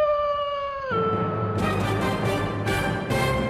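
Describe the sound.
A loud, sustained wolf howl holds a steady pitch, then drops abruptly and continues into a rougher, noisier wail with bursts of hiss, with no talking.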